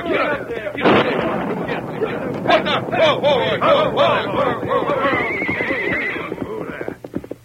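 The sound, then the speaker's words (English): Several horses whinny and neigh in shrill, overlapping cries while hooves clatter steadily underneath as riders swing their horses around and head back, all loud and busy, with a sharp booming burst near the start from blasting powder set in the entrance to a canyon. “Swing your horses around, head back, hurry.”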